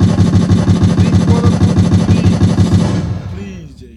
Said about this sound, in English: Let me pull out some gunshots for these guys.